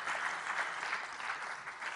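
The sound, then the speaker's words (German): Steady audience applause for the assistants who helped, a dense wash of many hands clapping at an even level for the full two seconds, with no voices standing out. “Dankeschön, die Assistenten kriegen einen Applaus.”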